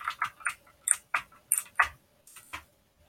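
A quick run of sharp plastic clicks from a computer keyboard, about a dozen uneven taps in a loose typing rhythm, fairly quiet with no voices.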